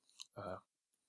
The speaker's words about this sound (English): As I take a sip of water